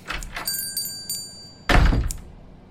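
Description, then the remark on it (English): The door of Daryl's Barbershop in Fruitville opens with a short ringing bell chime as someone walks in, then a solid thunk as it swings shut, fairly loud, with no voices. “And so, in the door he walks.”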